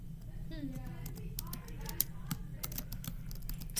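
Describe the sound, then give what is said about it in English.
Rapid, irregular clicking of keys on a computer keyboard as someone types in the name of an anime, steady throughout, with a faint murmur of voices and a low hum underneath. “What's you typing? I'm typing in that anime.”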